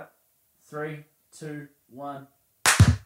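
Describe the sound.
A voice speaks three short, evenly spaced syllables like a countdown, then a single sharp, loud hand clap cracks out at the end.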